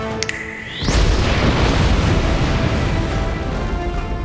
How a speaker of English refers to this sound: Olorun reached out into the inky black space below the Sky Kingdom and stirred up the gases with their massive hands. Then they snapped their fingers, creating a spark that ignited the gas into an explosion.